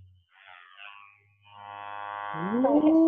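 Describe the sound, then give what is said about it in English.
A small waterproof "pocket rocket" vibrator with nubs buzzes with a steady, humming drone that grows louder, then its pitch bends and sweeps upward near the end. No one speaks over it. “Basically, this vibrates.”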